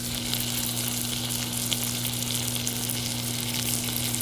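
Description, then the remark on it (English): Steady, crackling sizzle of food frying in a pan, continuous for a few seconds, with a low constant hum underneath and no one talking. “Listen to the sizzle.”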